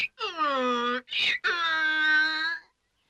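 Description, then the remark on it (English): A voice imitates a donkey's bray: two long, loud, strained vocal tones with a sharp breathy gasp between them, like a hee-haw. “Suddenly, he stopped and brayed.”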